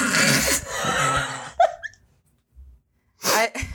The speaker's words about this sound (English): We had to cough our brains out for for a while. And really scream and try to clear our throats.